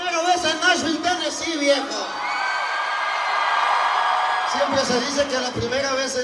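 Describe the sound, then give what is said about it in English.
A concert crowd of thousands of Latinos braving a torrential rainstorm in Nashville, Tennessee, roars and cheers in a dense, sustained wash of noise, framed by loud voices shouting or singing at the start and end. “But here he is, standing in front of a roaring crowd of thousands of Latinos braving a torrential rainstorm in the capital of country music, Nashville, Tennessee.”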